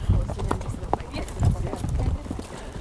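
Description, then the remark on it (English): Horse hooves plod at a steady walking pace through dry sagebrush, a big brown and white horse named Jack ridden alongside a horse named Bronco, with soft thuds and rustling scrapes over a low outdoor rumble, in sagebrush country where cows graze. “Merrill mounts his horse, Bronco, and I tuck my recording gear into my saddlebags and get on a big brown and white horse named Jack, which Merrill joked was short for Jackhammer. And we ride into the sagebrush where Merrill grazes his cows.”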